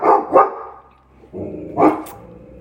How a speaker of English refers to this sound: I am house sitting, so Astro, the beautiful dog over here, is barking. It's because I hit the couch and it scared him. He thought it was a knock, so sorry about that.